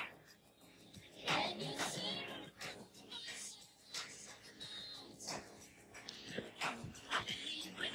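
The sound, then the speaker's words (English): A male dog moves about, snuffling and sniffing in short breathy bursts mixed with soft shuffling and rustling, irregular throughout. “Boy, what are you doing? Sorry, my dog.”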